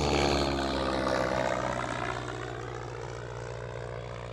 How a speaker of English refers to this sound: Have you ever looked up at the sky expecting to see the usual commercial jetliner flying high above, but instead were slightly surprised by a much smaller prop plane?